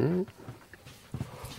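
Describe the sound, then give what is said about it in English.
A person yawns, with a short, loud, voiced moan at the start that trails off into quiet, breathy murmurs. No words are spoken. “Oh, apologies. Yawning. Starting the podcast with a yawn.”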